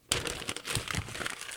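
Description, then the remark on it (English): A printed email on a sheet of paper is crumpled up, a dense burst of crinkling and crackling that starts abruptly and continues steadily for over a second with no voices. “No, I just crumpled it up.”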